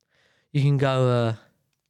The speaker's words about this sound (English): Sorry, I'm yawning.